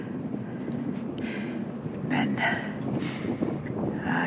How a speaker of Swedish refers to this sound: trots att det blåser ganska häftigt så just här är det inte så illa, för det blåser från ost.